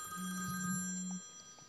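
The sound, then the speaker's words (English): A single electronic telephone ring from a junk phone call, a steady buzzing tone lasting about a second, with a faint background hum. “Another junk phone call, so ignore that.”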